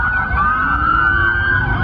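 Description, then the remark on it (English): A loud, sustained police siren wails steadily, with a second overlapping siren tone and low traffic rumble underneath, from a whole line of many police cars passing, out for kids with fireworks. “That so was a many, whole line of police so cars. So many police cars down for fireworks.”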